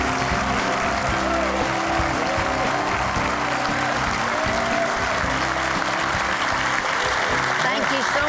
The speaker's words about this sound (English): Yeah, and they're not only clapping, they're smiling. Yeah, they look happy